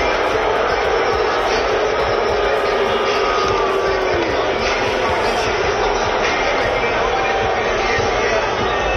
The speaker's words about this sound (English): he was met with a plethora of boos from the Philly faithful